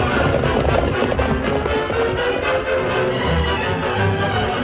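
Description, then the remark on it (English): The horses Silver and Scout galloping at full speed as they carry their riders down from a cliff, a loud, steady rush of rapid hoofbeats that continues throughout without any voices. “As Silver and Scout bore their riders down from the cliff”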